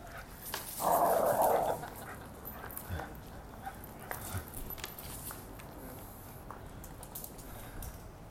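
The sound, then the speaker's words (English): A puppy, Weppy, lets out a short, rough growl lasting about a second in a ferocious display against a large neighboring dog, followed by a stretch of quiet background noise with a few faint clicks. “as Weppy the Puppy tries to put on a ferocious display against a large neighboring dog.”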